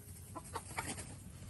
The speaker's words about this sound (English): Oh, that's our little ridiculous sounding rooster. Do it again, Frizzle. Do it again, Frizzle. Come on, Mr. Sparkles. He sounds like a cat being strangled when he crows.